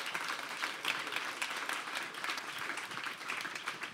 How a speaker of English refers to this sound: Can you guys give a round of applause